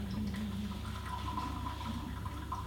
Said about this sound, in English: So, let me just top up the water here.